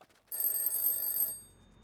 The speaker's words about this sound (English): Mike's phone rang early the next morning, waking him from a dead sleep.